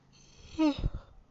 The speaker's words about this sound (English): Shit, 2 yawns a day. So, actually, that's okay for his PR image. And actually, the second yawn wouldn't have been in this podcast, because I am already 20 minutes up right now.